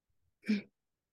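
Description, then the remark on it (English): One abrupt hiccup, a short voiced gulp with a breathy edge, standing alone against near silence. “I had to hiccup.”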